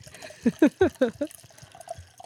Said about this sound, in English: I probably should not fill up my entire glass. Sorry, I'm only having one, so that the rest is yours.